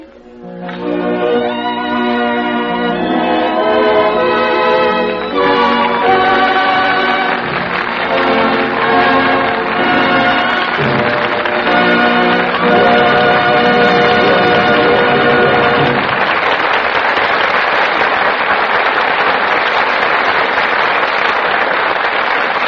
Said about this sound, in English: Sure, we all agree that Myrna Loy and Don Ameche deserve every bit of the applause they're now getting. They did a truly splendid job.